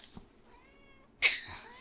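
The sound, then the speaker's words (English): A cat gives a soft, drawn-out meow, then a sudden louder, harsher cry near the end, and no one is speaking. “Come on, apparently, let me clear a spot for you, little kitty.”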